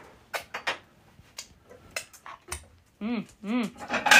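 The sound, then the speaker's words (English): Vegetables being chopped in a kitchen: irregular knife knocks and clatter against a board, followed by a couple of brief tonal squeaks near the end. “We'll start chopping.”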